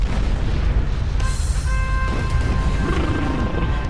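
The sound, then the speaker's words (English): A heavy, continuous low rumble with crashing, grinding texture as an impenetrable fortress wall is broken open by the Legion, shaking the building, with a sharp bright burst partway through and ringing tonal debris above the roar. “As if on cue, a thunderous rumbling shakes the building. Then another, the sound of our impenetrable fortress wall being broken open.”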